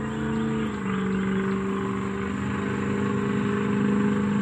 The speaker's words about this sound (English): I tell you, little car going by.